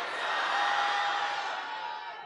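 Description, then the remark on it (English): A person in an audience screams in one long, sustained, high-pitched cry over a wash of crowd noise, holding steady for about two seconds before tapering off slightly. “Someone is screaming, it's my time.”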